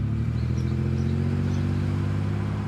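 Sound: truck pulling up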